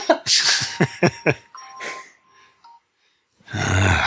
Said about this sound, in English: Hold on. All my alarms are going off telling me that it's time for the Stone Ape podcast.